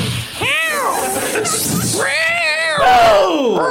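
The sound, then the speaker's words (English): A person imitates an angry, hissing cat: three loud, drawn-out yowling cries that swoop up and down in pitch, with a brief breathy hiss between the first two. “If it's hissing positively, is it okay?”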